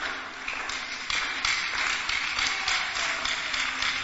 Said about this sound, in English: Clap your hands to Jesus. Bonsel my Jesus. The place is hot, but as you are clapping, my prayer is that God will give you a nice atmosphere.